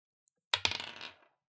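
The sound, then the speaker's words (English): Dice rolled on a table for a perception check in a tabletop role-playing game, coming up 19: two sharp clacks, then a quick run of bright, rattling bounces that fade out in under a second, with no voices. “All right, I would like to roll, what is it, perception?”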